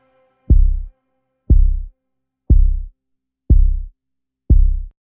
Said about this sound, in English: more and more the kick became dominant. And in fact, I kind of peeled at the end, I peeled away all the instruments so that all you were hearing was that pulse, that countdown, and that kind of heartbeat. And I feel like it ramps up the anticipation.